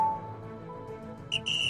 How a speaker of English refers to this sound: That is our final whistle.